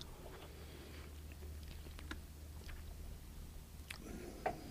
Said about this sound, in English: Let me get a little sip here.